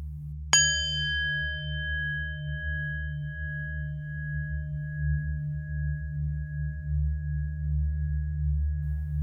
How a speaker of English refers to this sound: So at the sound of the bell, we will begin.